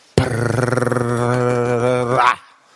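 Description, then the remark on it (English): A voice imitates a drum roll with a low, buzzing rolled trill, held steadily for about two seconds before cutting off abruptly. It is fairly loud, with no other sounds. “Drum roll, please.”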